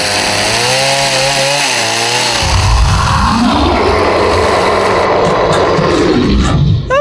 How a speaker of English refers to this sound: Just grab that electric knife and...